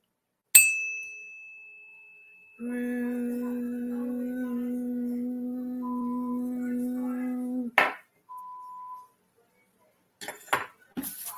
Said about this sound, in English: I'm going to ding my bell for each person because I can.